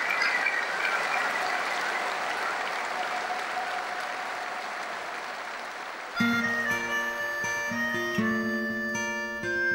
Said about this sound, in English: He deserves nothing more than a minute's applause from both the supporters. And you know, just in all respect for Cardiff, just you know, a thank you to them for honouring one of Millwall's greatest ever players.